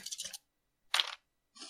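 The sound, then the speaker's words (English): Dice, including a d8, clatter across a hard table in three short, bright rattling bursts separated by brief silences, fairly quiet, with no voices, rolled for damage in a tabletop role-playing game. “Alright, 1d8. Alright, sorry, I have damaged dice.”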